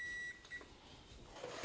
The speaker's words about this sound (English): And as soon as the timer beeps here, we're just going to take it off the heat, move it to the side so that it's no longer over the heating element.